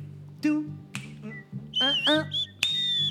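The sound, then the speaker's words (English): Music with short, bright tonal stabs, then a high whistled line enters partway through, gliding and wavering before holding a sustained pitch to the end. “Is that whistle? Yeah.”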